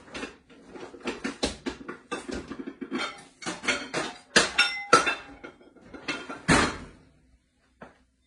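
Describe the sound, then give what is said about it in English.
Clattering of kitchenware as a cover is handled and set onto a 2-quart microwave casserole dish, with a run of sharp clinks and knocks, a few louder clacks, then quiet and one last faint tap. “And I'm gonna get the cover here.”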